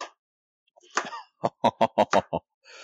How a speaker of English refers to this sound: We can hear you chopping, by the way